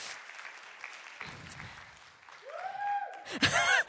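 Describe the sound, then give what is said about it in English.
A light smattering of audience applause as people come out, scattered claps from a modest crowd that swells toward the end, with a rising whistle-like tone and brief cheering near the close. “Little smattering of applause as people come out, please.”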